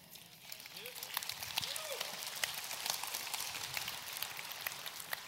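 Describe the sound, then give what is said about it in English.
A crowd applauds in a dense, steady wash of many hands clapping for several seconds, with a faint voice briefly audible underneath near the start. “I love that y'all clap there because it shows your heart.”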